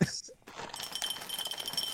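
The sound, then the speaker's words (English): Almond milk poured into a glass: a steady, bright splashing gurgle that starts after a short pause and runs continuously to the end, fairly loud, with a faint clink at the very beginning. “It sounds like a fucking waterfall.”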